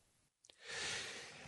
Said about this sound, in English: Pardon the sneeze, second week in a row on this podcast, and I shouldn't do that to you. I sneezed away from the mic, you should be okay. You can't catch it through your ears, obviously, and it's just an allergic sneeze. I'm not sick, I feel great.